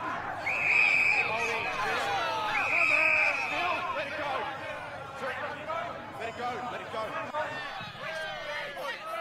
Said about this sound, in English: Oh, do you want crowd / mob / riot noise? That's strangely on point in a very sad, dark way. Topical. Sure, why don't we listen to that? Oh, it was actually produced for Henry the Sixth, Part 1.